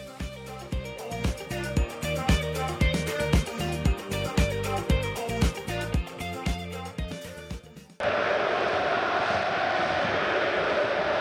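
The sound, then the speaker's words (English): A rhythmic, drum-heavy music passage plays for several seconds, then cuts abruptly to a loud, steady roar of a large stadium crowd at Papadoc Park in Haiti after a football match has ended. “As you will hear from the magnificent sounds here at Papadoc Park here in Haiti, the match here today has ended.”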